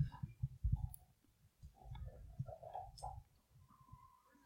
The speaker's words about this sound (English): Scout is chewing on his bone right now. It's so loud. I'm going to have to take his bone away.